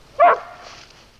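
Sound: dogs barking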